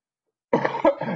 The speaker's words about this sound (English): As I cough into my sleep.